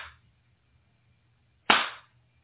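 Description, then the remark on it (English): A loud, sharp hand clap done as a clapping clearing, with a short ringing tail, following the fading end of an earlier clap. Quiet otherwise, with no voices. “I'm going to do some clapping clearing on that. It's going to be a little loud.”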